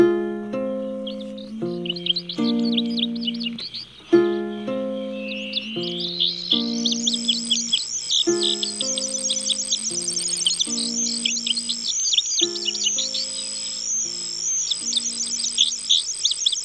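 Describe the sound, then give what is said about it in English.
A bright, high-pitched song of an indigo bunting, a small finch: quick paired two-syllable warbling phrases with definite spacing repeat steadily over a soft musical backing of sustained low chords, with no one speaking. “The indigo bunting is a pretty little finch that delivers its persistent song while perched at the top of a shrub in a brushy field or roadside.”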